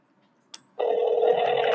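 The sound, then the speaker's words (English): A short click, then a steady electronic ringback tone starts and holds, a sustained telephone ring played loudly through a phone speaker with no voices over it. “Right, the whole time you hit dial, and you're just chatting until he answers.”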